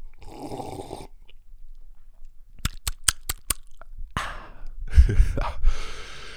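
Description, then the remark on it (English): A breathy inhale is followed by a quick run of sharp clicks, then wet slurping and swallowing as someone takes a sip of coffee from a cup. “In fact, let's take a sip before we keep going.”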